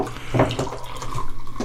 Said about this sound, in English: Oh, it looks like I'm pouring the morning juice. It does.